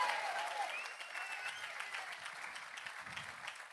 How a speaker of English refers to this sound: Good spot for an amen. If you're going to clap, give God a good hand clap today.